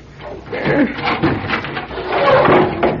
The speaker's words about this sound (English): Yeah, here, help me. Shove it open. Take that chain off the door